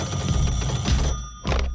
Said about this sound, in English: My phone's ringing, man. Then Barbie starts ringing.